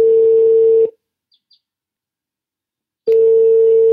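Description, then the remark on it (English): A Skype call's outgoing ringing tone: a steady, loud electronic hum sounds, stops for about two seconds of near silence, then starts again. No one speaks. “So I reached him by Skype.”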